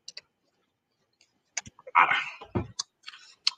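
Someone takes a sip of juice: a few small mouth clicks, a brief wet slurp, then a soft gulp and more faint clicks, with no talking.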